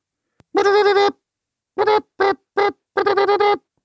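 A buzzy, honking ringtone plays in rhythmic bursts: one long tone, a gap, three short quick beeps, then a fluttering run of rapid pulses, loud with no one talking.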